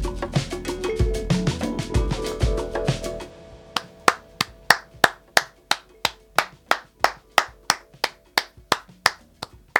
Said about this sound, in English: So it's 5 o'clock and it's time to celebrate those heroes with a clap across the nation.